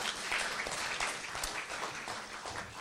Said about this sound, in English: Big round of applause.